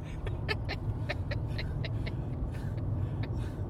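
Steady, heavy low rumble of a car interior early in the morning: engine drone and road noise running throughout, with faint scattered clicks and rattles on top and no one speaking.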